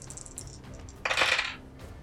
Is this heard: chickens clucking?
no